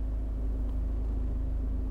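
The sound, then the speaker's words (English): A car engine idles steadily, a constant low rumble with a faint mechanical hum and no changes in pitch or revving. “Let's turn off the car.”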